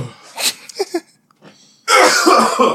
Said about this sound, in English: Oh, no. Sneeze.